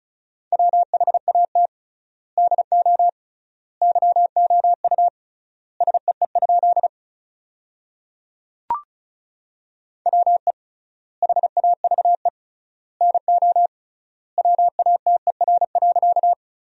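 Fast Morse code at 35 words per minute, sending sentences made from the top 100 words with triple word spacing: a steady, mid-pitched tone keyed in quick dots and dashes, grouped into bursts with pauses between words, and one sharp click midway.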